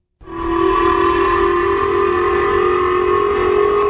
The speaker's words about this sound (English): Air raid sirens ringing out across Tokyo, warning residents of an incoming missile fired by North Korea.